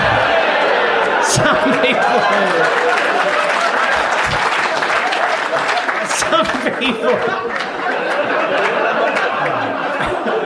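A large audience claps steadily and loudly for about ten seconds, mixed with scattered chuckles and crowd chatter, the dense applause continuing without a break.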